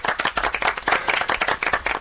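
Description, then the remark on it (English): An audience applauds, with many hands clapping in a dense, steady patter for about two seconds. The clapping stays fairly loud and even throughout, with no voices standing out. “Okay, take the round of applause.”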